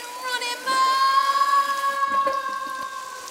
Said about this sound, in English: Polly jumped quickly between his fingers, and after a not too pleasant swirl around a rather waxy ear, Polly was tossed into the toilet and flushed away to begin her adventure.